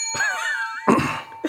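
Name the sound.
small bell being rung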